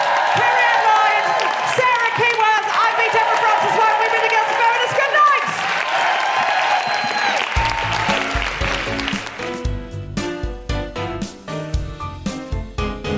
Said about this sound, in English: Big round of applause for you guys. Big round of applause for King's Place. Huge, huge round of applause for Michelle de Swarte.